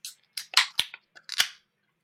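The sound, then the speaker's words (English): A beer can cracked open: a few sharp clicks followed by short bursts of hissing fizz, fairly loud, with no voices. “Are we ready to crack the second beer of our Paradise Mojo First Anniversary Cocktail Sour Spectacular?”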